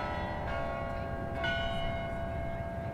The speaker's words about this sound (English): One of the special signature sounds in the Arlington soundscape is the Netherlands Carillon bell tower, which sits on a grassy hillside overlooking the DC monuments. The chiming of its 50 bells wafts past the Iwo Jima Memorial